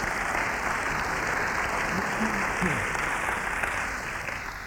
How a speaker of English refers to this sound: So if you appreciate that, you can applaud, you can hold your breath, you can do whatever you want.